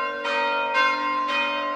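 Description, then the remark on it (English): A monastery church bell at St. Meinrad rings in steady, resonant strikes about every half second, each new clang layered over the long sustained hum of the previous ones, loud with no voices. “One other thing that strikes me about the bells.”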